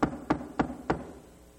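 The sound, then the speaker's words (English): A man knocks on the door of a woman's house: four evenly spaced knocks, firm, each a sharp thud with a short ringing decay, followed by quiet. “She was badly in need, so he knocked at the door.”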